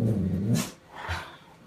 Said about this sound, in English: Our neighbor. Is he going to bark outside on our neighbor? No. He's standing half in, half out of the dog door. Glaring at the neighbors and while it's raining.